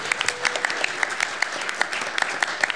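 An audience claps steadily, a dense patter of many hands with sharp individual claps popping out above the wash, sustained at moderate loudness throughout.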